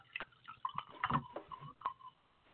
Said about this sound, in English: Pour it into the glass. Ooh, yeah. Tip it up. Get every last little drop. Give it a little shake, a little shaky poo. A little cap on the bottom. Don't want to leave any in.